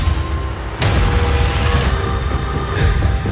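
sound effect, explosion boom

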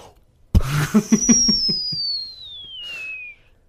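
signal or alarm, whistle

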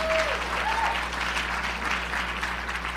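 crowd, audience applause

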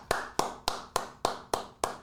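crowd, clapping

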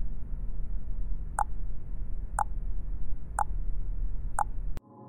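machine, countdown timer ticking

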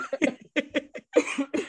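human body sound, cough

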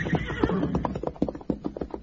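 animal, horse whinnying

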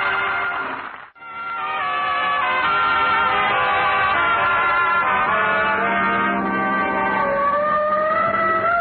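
vehicle, car siren wailing

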